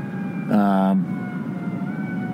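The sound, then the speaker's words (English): A fire engine on Houston Street lets out one short, loud, steady-pitched horn blast lasting about half a second, standing out over the constant hum of busy city street traffic. “Oh, they got a fire engine there.”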